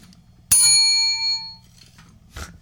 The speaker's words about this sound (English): Let's get my bell for that, because that's very important.